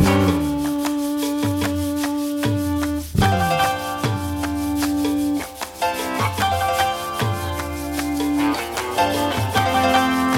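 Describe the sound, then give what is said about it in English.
Sustained electric guitar feedback tones, probably swelled with the guitar's volume knob rather than a pedal, swell in and fade out in a dense band mix, with steady drum hits and a pulsing bass underneath; no one speaks. “It's feedback and guitar noises with volume knob, probably, rather than pedal.”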